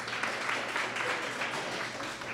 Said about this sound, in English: And so give yourself a hand clap this morning. Good job, ladies.